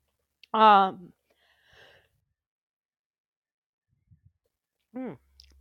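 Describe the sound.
A single short, throaty cough bursts out, followed by quiet breathy sounds and a couple of faint clicks, then a brief voiced grunt near the end.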